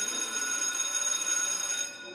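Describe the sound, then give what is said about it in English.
A telephone bell rings in one continuous, loud metallic trill lasting about two seconds, bright and steady, easing slightly at the very end. No one speaks over it. “Saved by the bell this time”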